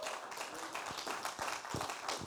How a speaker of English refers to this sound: Can we give our first-time visitors a big clap again?